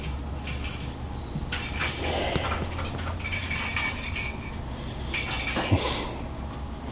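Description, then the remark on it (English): A cat named Pete bats his Angry Birds plastic cat toy around at about midnight, making irregular clattering and rattling bursts with sharp clicks and knocks, steady and fairly loud throughout, with no voices. “You're hearing the sounds of Pete with his frickin' Angry Birds plastic cat toy.”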